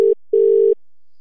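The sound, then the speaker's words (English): A phone line's ringback tone: a steady, mid-pitched electronic hum sounding in short bursts separated by silence, with no voices. One brief pulse is cut off at the start, then a longer one follows. “let's try and call Julian quickly”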